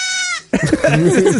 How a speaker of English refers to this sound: It's a goat that tries to... What is that? Like, neigh? Bleat.